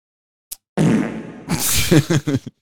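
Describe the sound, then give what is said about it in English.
A faint click, then a long, loud fart noise: a low buzzy rasp turning hissy, ending in several quick sputtering bursts. No one speaks. “That was not the soundboard. That was just him going through his recalling. Do you ever do like live farts?”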